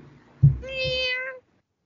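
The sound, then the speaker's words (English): A single drawn-out, clear cat meow lasting under a second, with a soft low bump just before it and silence afterward. “It's a nice cat.”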